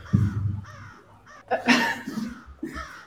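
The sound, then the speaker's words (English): A crow caws loudly, a few harsh, raspy calls in quick succession with short gaps between them, a comedy crow sound effect heard on its own without any talking. “Okay, maybe I'll try out the Comedy Crow for the miniseries and see if people like it better.”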